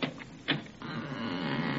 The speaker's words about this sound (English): Well, here it is. Well, wait, I'll open the door.